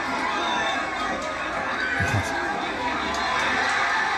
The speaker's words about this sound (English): Yeah, they're getting all rowdy. Watch. The kid takes his shirt off. They do chants.